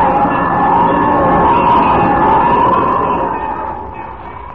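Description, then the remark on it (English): A loud alarm bell, rung by a person in trouble to call for help, rings continuously for several seconds, a steady, harsh clamor that holds at full strength before easing slightly at the end, with no voices over it. “It's the bell. Jimmy's in trouble. He's ringing the bell.”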